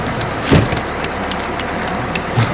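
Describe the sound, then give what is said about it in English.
A party bus engine idles steadily in the background while people board and a heavy door thuds shut once, followed by a softer knock a couple of seconds later. No one speaks. “Everybody get aboard the stripper bus.”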